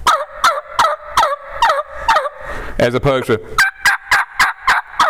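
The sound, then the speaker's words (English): A man demonstrates a turkey call, producing a loud run of hen yelps in a steady, even rhythm, broken briefly by his speaking before the yelping resumes. “I'll actually hen yelp the sexy hen he's been hearing, and then I'll answer it with those Jake yelps.”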